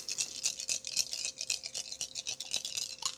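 Dice rattle and clatter continuously for a few seconds, a quick scratchy stream of small clicks with no clear pauses, fairly quiet and with no one talking.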